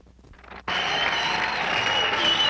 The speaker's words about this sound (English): they're all just kind of sitting on the floor, milling around, waiting for the band to start